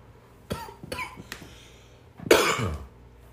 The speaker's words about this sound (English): I'm over here smoking. Don't don't mind the cough. It's not that vid.